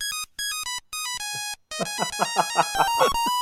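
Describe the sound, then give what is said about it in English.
An old-style mobile phone ringtone plays a bright, beeping electronic melody of rapid synthetic tones, starting with staccato notes and then sustained buzzy chords, clear with no talking. “Last time they won there, your mobile phone might have sounded like this.”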